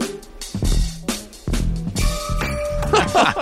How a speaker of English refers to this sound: That is definitely a sleigh bell. That is awesome. That was really fun. Yeah. That's a different use of the sleigh bell, though, right? Because typically we are used to the like the movement, and here they're almost an accent.